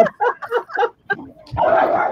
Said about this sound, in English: Uh-oh, it sounds like a dog fight.